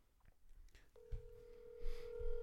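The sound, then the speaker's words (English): A phone line rings out on an outgoing call to the caller's mother, a steady electronic ringback tone sounding clearly for over a second, with some low thumps and handling noise underneath and no talking. “I'm gonna call my mom after this and thank her.”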